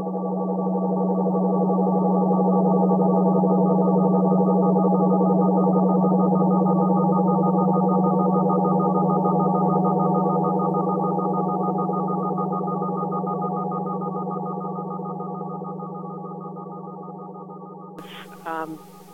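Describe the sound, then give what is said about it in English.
Drone music: a steady, low, buzzing chord of stacked harmonic tones held unchanging for about eighteen seconds, slowly fading, then cut off by a brief crackle at the end. “Drone music described as ambient is, at its root, contemporary drone music.”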